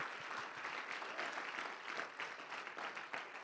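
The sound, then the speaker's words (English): A church audience gives a hand clap of praise for its pastor, a dense, steady wash of many hands clapping at once, sustained and even in loudness for the whole stretch with no voices standing out. “Give him a great big hand clap of praise.”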